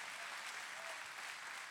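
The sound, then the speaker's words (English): Steady applause from an audience responding to a speaker talking about God and transformation, dense overlapping clapping that stays at an even, moderately loud level throughout, with no voices standing out. “You should clap right now.”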